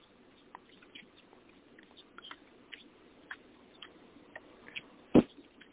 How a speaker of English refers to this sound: Okay, just give me a moment. I'm just shuffling some cards here.